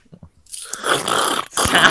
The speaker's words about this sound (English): I'm just sipping my tea, dude. If you're gonna sip your tea, mute your mic.